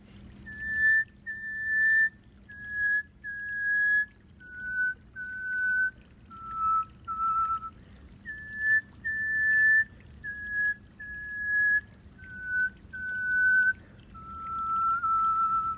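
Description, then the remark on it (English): A person whistles a slow melody, a series of clear sustained notes that step up and down in two similar phrases, over a faint low background rumble. “My whistling, more than anything, is a form of self-expression.”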